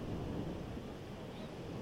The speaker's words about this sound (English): the days I decided to record, the wind was really strong, and so some of those waves that were crashing onto the shoreline were 2 to 3 feet, 2 to 3 feet tall.